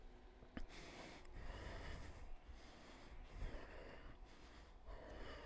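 Slow, audible ujjayi throat breathing with lips sealed, a steady oceanic hiss drawn in and out through a constricted throat, continuous with gentle swells between breaths and no talking.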